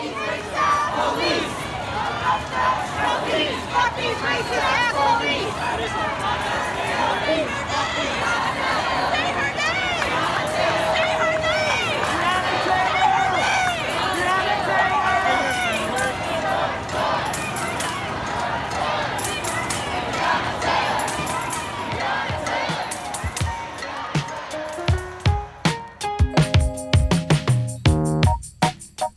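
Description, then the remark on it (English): A protest crowd of demonstrators in New York City, outraged by the police murders of Breonna Taylor and George Floyd and demanding police reform, fills the scene with a dense, steady roar of many voices shouting and chattering at once, staying loud throughout before giving way to sustained musical tones in the final seconds. “Here are some demonstrators from New York City this week.”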